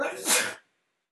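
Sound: sneeze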